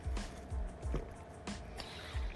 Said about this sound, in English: Sorry, just getting some water.